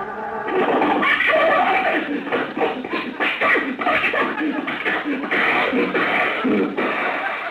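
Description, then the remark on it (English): A car motor sputters and coughs without catching, a continuous rough, gargling chug of irregular bursts for several seconds, loud. The sound seems to be imitated by a human voice. “The motor sounds as though it's going from bad to worse.”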